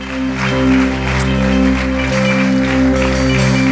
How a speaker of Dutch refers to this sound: Why don't we give these guys a hand? Laten we een applaus geven.